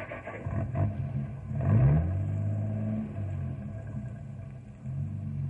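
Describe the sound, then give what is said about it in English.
A truck with a sled sticking about 2 feet off the back rumbles, revs with a rising roar, then settles into a steady, heavy drone as it pulls away. No one speaks. “Let's get in the truck and go.”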